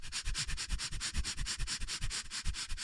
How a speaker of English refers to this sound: What is breath of fire? Breath of fire is a rapid rhythmic breath through your nose that pumps the blood really fast into your heart. Can you make a little bit? Yes.